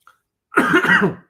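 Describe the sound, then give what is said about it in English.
A single loud cough with a rough, rattly texture, lasting under a second after a brief moment of quiet, with no talking over it. “Hold on, I'm going to cough.”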